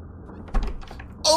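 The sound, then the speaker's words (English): A door opens with a soft thump and some rattling as a man sneaks in, then a short, bright creak at the end. It is fairly quiet, with no one speaking. “He sneaked in through that door.”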